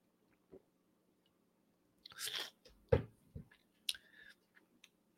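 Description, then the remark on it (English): A quiet sip from a drink: a brief slurp, then a sharp click and a few soft mouth and swallow noises, with no talking. “So let me take a sip here.”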